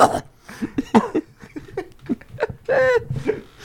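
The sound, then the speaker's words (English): A person fakes a fit of coughing, a rapid string of short, harsh vocal bursts with a strained, choking edge that sometimes slides toward laughter. “She goes down the wrong pipe and she coughs.”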